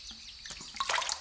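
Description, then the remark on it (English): Water splashes and drips in a few quick, bright bursts as water from a pitcher is splashed onto a face and arms, with no one speaking. “I got up and went to the pitcher of water the servants had given me last night. The water felt good on my face and arms.”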